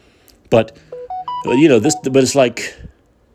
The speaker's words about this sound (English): I'm sorry, that was a beep. I'll tell you what that beep was about in a second. What was I saying? The beep got me off track, like Biden.